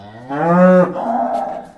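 A cow lets out a single loud, drawn-out moo with a rich harmonic tone, starting low and steady before trailing off into a rougher, fading tail. No talking.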